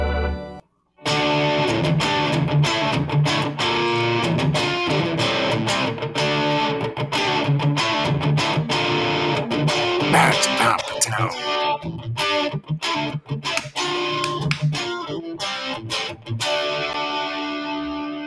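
A loud hard rock recording plays continuously, with heavily distorted electric guitars and pounding drums filling the mix from start to finish after a brief silent moment.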